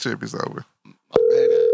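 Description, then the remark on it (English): A voice speaks briefly, then after a short click a loud, steady electronic ringing tone of an outgoing phone call begins and holds to the end, with faint talk underneath it. “Ringing.”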